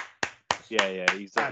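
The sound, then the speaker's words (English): Brief applause: about five sharp, crisp hand claps at a steady, quick pace, with voices cheering or calling out over the later claps. “Just a round of applause for the man.”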